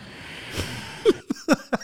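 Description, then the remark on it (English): Heavy breathing: a soft hiss followed by several loud, rough gasping breaths, some with a slight voiced groan, coming in quick uneven bursts. “The heavy breathing is the best part.”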